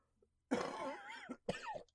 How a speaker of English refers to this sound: Do I keep the coughs in so the audience knows that I'm not okay?